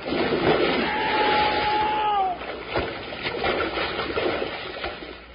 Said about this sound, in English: These big logs will slide right out on that lake like a canoe on a mill pond. I hope you're right. I'm all set. So am I. Here we are. We're hit with a big splash, so hold on tight.